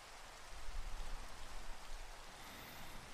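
Steady rainfall makes a dense, even hiss with a soft low rumble underneath, holding at a constant level throughout with no voices or thunder.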